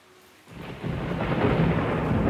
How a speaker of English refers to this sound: And the rain begin to pour.